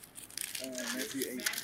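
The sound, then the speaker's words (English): Crisp paper rustling and crinkling in quick irregular bursts as someone searches for a lost page, as if pages are being shuffled by hand, with a faint murmuring voice underneath partway through. “I lost my paper.”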